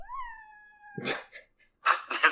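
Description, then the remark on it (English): A pet cat gives one long, high, steady meow lasting about a second, followed by a few short, noisy, breathy bursts. No one speaks. “Hold on, my cat is... Get out of here.”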